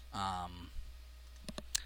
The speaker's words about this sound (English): I'm just going to type Super 8 here on eBay and see what I come up with.